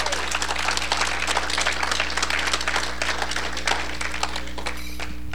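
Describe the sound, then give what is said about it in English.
A church audience applauds to give God a hand, many hands clapping in a dense, steady wash of sound that holds at an even level for about five seconds before thinning out at the end, over a low background hum. “Give God a hand.”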